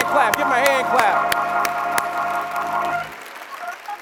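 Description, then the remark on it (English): A church crowd applauds their pastor with steady, dense hand clapping, mixed with scattered cheers and whoops and a sustained tonal hum, before the clapping thins out and fades near the end. “Just give your pastor a hand clap and honor them for all that they do, who they are.”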